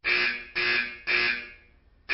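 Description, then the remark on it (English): A loud, harsh fire alarm blares in a building in repeated bursts, three long buzzing pulses about half a second apart and a fourth starting at the end, with no voices. “That's an alarm. Oh, my God. There's a fire in the building.”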